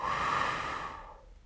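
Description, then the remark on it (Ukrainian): A slow, deep, ordinary breath, a long airy inhale flowing into a fading exhale, with no talking. “Звичайний вдих та видих.”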